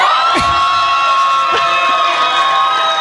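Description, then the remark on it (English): A crowd of fans, among them Kobe fans, cheers loudly and continuously, a dense wall of shouting voices with a couple of sharp whoops rising above the roar. No one speaks. “That's just because the few Kobe fans was louder than everybody else.”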